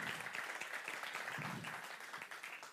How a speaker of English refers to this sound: Can you give Nigel an applause?